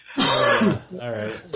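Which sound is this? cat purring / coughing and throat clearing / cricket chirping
coughing and throat clearing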